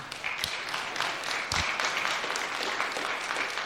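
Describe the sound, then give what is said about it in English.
A church audience claps together in a dense, steady burst of applause that holds at an even, fairly loud level for a few seconds, with no one talking over it. “So did the camera get everyone who clapped, who will now?”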